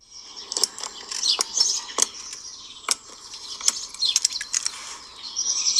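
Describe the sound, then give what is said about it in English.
Birds chirp and sing steadily in the background while sharp, irregular clicks snap over them in the foreground, with no voices present. “The birds are singing, so it must be a certain time of day.”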